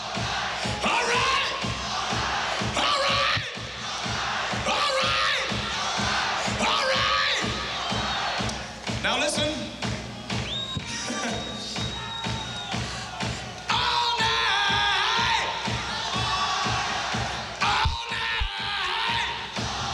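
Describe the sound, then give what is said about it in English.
A large, loud concert crowd cheers and yells continuously, with shouts and whoops rising over a dense roar while faint drums and music thud underneath. “Hear the crowd pretty well, better than you can hear the drums.”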